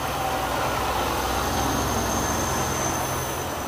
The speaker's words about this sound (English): Hold on, y'all. It's like every time I try to talk, they got a truck or car passing by.